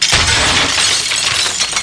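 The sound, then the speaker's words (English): A loud crash of a moped plowing into the back of a Ferrari driving flat out: a heavy low thud of impact followed by nearly two seconds of bright, crackling shattering glass and scattering debris, with no voices. “Suddenly, the moped plows into the back of the Ferrari.”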